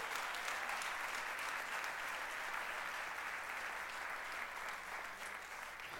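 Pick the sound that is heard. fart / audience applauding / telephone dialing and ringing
audience applauding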